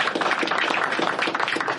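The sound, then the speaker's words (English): A crowd applauds Governor Terry McAuliffe steadily, with a dense wash of many hands clapping at once at a fairly loud, even level and no voices on top. “Okay, give him a big applause.”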